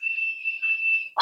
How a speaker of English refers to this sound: Sorry, I'm getting distracted by a high-pitched sound. I think my smoke detector's going off.